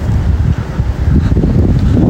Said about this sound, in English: All right, now we're in front of the Marriott. And it's cold and windy. Summer was over, winter is here. Overnight.